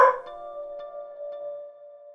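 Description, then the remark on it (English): A dog barks once. The bark stretches into a long, steady, tonal whine that slowly fades over about two seconds, with no voices. “And 1 for the best dog a guy could have. Right, Towns?”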